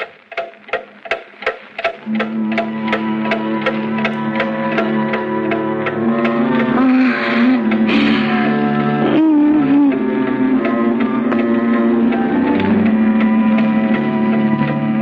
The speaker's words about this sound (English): We hear the ticking of the clock again, and then eerie music.